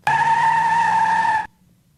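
A single loud car tire screech sound effect, a steady high-pitched squeal of rubber skidding on pavement, holding for about a second and a half before cutting off abruptly.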